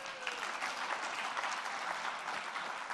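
An audience claps steadily for a few seconds, a dense, continuous patter of many hands filling the room at a fairly loud level, with no voices rising above it.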